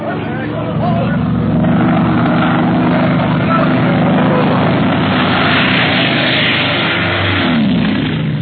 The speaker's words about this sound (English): Is a madman flying that plane? Why is he making such dives and so low? He started from a great height